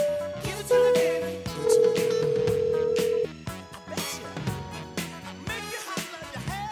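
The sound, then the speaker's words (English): Steady telephone tones, like dialing and a line connecting, sound for a few seconds over a busy music bed; the tones are clear and fairly loud, then the music carries on alone. “So without further ado, let's get this party started and get the captain on the phone.”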